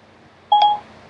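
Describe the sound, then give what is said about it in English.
A single short electronic beep from a phone as an alarm is set for 5 a.m., steady and mid-pitched, lasting about a quarter second with a tiny click in the middle, surrounded by faint background hiss and no talking. “Must set alarm for 5 a.m. toilet scrubbing.”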